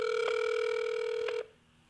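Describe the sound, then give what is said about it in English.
A phone line rings out on an outgoing call: a steady, buzzy ringback tone holds for over a second, then cuts off into quiet line hiss. No one speaks. “On the phone right now, Treach Fazlon. I'm trying to get her on the phone.”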